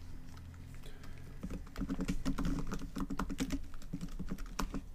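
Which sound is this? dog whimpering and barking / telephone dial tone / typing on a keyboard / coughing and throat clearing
typing on a keyboard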